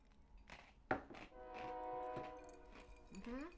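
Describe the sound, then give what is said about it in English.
A train horn sounds one long, steady, loud blast with a rich, chord-like tone, preceded by a sharp knock and some background rumble. “We haven't had a train in a while.”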